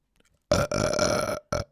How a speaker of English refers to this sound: Sorry about the burping, everybody.